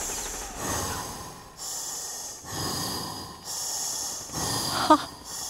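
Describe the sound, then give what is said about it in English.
Heavy, rhythmic breathing through a gas mask by an actor in a film scene, hissing, with about six steady inhales and exhales in an even beat following blank verse rhythm. No one speaks. “And but when I went in to kill the king wearing a gas mask so that my face couldn't be seen, I was breathing heavily, but my breathing was beating out the blank verse rhythm.”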